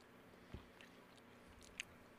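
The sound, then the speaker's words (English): Close-up chewing of something hard, with a couple of sharp crunchy bites standing out over softer mouth noises, quiet and right against the microphone with no talking. “I'm sure everybody likes hearing us chew into the mic.”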